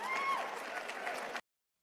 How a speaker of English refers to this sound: Interesting mix of reaction there. At the end, he got some applause.